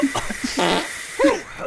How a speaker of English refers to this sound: Gosh, someone's really cranking up the fart machine out of that special gift.